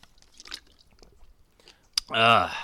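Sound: beer cans cracking open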